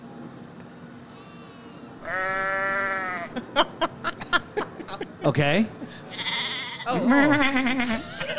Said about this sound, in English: Okay. Like sheep. All right, so there's the first one. Okay. So that one's just the ram chilling. Right. Okay. All right. So, okay, that's the ram noise.